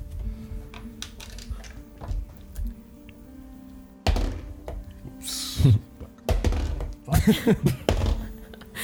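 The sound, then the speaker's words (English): Dice are rolled onto a table for a history check, staying on the table and landing an 18, making a series of hard clattering taps and thunks that come in two or three loud bursts over a faint background hum. “Never drops dice. 18. Uh-huh. 18. You remember. Didn't fall on the floor. Never drops dice. Over the table.”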